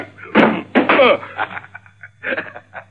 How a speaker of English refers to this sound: Your gun hit the door